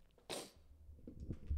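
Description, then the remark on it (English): A single sharp, breathy sneeze bursts out, followed by a few quick, softer sniffles through the nose, with a low background hum underneath. “Excuse me, I got the sniffs.”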